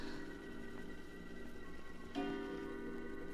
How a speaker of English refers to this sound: After tossing in my bed for hours, I fell into a fitful sleep. And I suddenly awakened to hear the clock in the hall striking the hour.